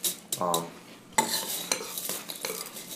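A spoon stirs through Frosted Flakes cereal in a bowl of milk, with repeated clinks and scrapes against the bowl and soft wet, crackling swishes in an irregular rhythm. No one speaks.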